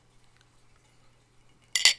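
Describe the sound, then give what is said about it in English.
After near silence, two glasses tap together in a quick toast, a brief bright clink with a short high ringing tail. No one speaks. “Clink me.”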